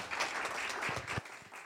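A crowd bursts into loud, dense applause mixed with cheering, a steady wash of many hands clapping that holds strong for under two seconds before thinning slightly at the end.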